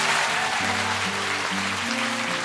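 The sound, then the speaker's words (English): An audience claps in a steady, dense wash of applause for author Catherine Gray that holds at an even level throughout, with a sustained musical chord progression playing underneath. “And I'd love it if you could all give a massive round of applause to our first podcast today, Catherine Gray.”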